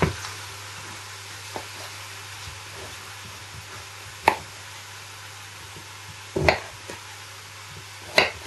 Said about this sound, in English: I prefer to use a bigger knife for when I'm actually chopping my swede.